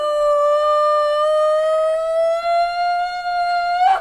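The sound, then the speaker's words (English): A woman lets out one long, piercing scream that holds steady for several seconds and slowly climbs in pitch, loud, with a brassy, trumpeting wail like a wounded elephant. “Then Ulupi screams like a wounded elephant.”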